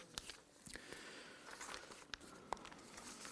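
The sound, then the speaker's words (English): Quiet rustling and crinkling of printed paper sheets with slides on them being handled, with a few sharper crackles standing out from a soft, continuous shuffling. No one speaks. “I printed the slides way too big on my paper.”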